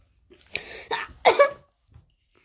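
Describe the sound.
A person makes a staged, theatrical fake sneeze: a breathy build-up of short gasps followed by a loud burst, then quiet. No talking accompanies it.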